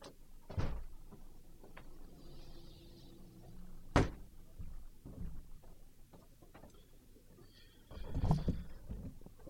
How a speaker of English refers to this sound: Sorry, kids. Just had to open up the studio door.